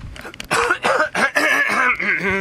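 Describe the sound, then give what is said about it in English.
A person coughs and clears their throat, several loud, rough bursts in quick succession with gravelly, voiced rasps trailing between them, and no talking. “I really needed to cough.”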